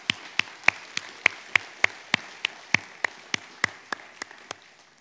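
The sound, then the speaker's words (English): One person claps loudly into the microphone during a church service, about sixteen sharp, evenly spaced claps in a steady rhythm that soften slightly toward the end, with no talking. “I didn't really realize I was clapping so loud in this microphone, so I apologize for that.”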